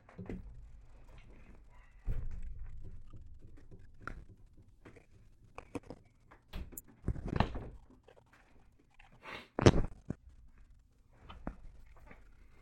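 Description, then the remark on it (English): Shuffling footsteps and handling noises, then a person pushes their door shut with a couple of solid thuds, followed by soft movement. “I'm going to go close my door.”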